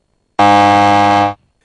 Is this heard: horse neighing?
no